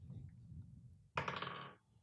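A short rattling clatter of small hard objects tumbling across a surface as dice are rolled, bursting out after a low background rumble and lasting about half a second.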